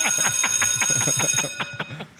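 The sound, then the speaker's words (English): A bright bell rings out with sustained metallic overtones and a rapid, repeated ringing pattern, loud, before trailing off near the end. “Hit that bell.”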